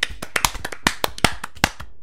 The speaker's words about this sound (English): And we've clapped